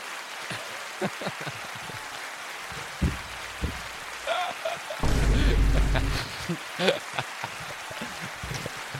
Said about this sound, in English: Applause. You can't tell me what to do. Applause.